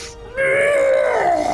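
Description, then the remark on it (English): A person voices a winged monster's enraged roar at being harmed by giant chunks of ice: one loud, sustained, strained vocal growl that holds a steady pitch before sagging slightly at the end, following a short breathy intake. “As its mouth kind of like roars, as its neck whips around in rage at being harmed by these giant chunks of ice.”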